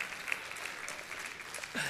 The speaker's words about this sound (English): I will pass on the news that you gave him a round of applause.